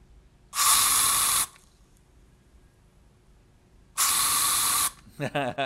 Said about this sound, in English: I saw a lot of people guess what it was. Yeah. I know what it is. It's a Lysol spray.